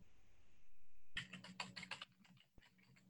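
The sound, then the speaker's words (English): A quick run of keystrokes on a computer keyboard, several clicks in a burst followed by a few sparser taps, with no talking, as someone types the mushroom name flammulina. “So I'm going to type in flammulina.”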